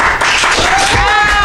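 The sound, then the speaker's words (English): A live crowd bursts into loud, steady applause for a man being called up to say hi, dense clapping layered with cheering voices and a rising whistle-like whoop toward the end. “Let's give it up”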